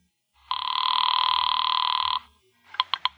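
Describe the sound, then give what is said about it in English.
A telephone rings with one long, steady electronic trill lasting nearly two seconds, followed after a short pause by three quick, sharp bursts of the same ring. No one speaks. “Now take the phone. Tell him. It's ringing.”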